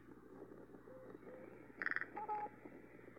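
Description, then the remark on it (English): A crow gives a short, speech-like utterance: a quick burst of rapid raspy pulses followed by a brief tonal note, fairly close, over a steady low background hum. “Talking Wild Crow Actually Speaks to Squirrel and Bird Feeder”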